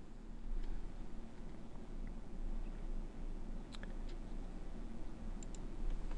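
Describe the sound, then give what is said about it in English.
Faint, scattered computer keyboard taps, someone typing in something to double-check exact wording, click sparsely over a steady low background hum, a few quick keystrokes at a time, with no one speaking. “Chris says, and Chris, I am just typing in something to double-check the exact verbiage of something.”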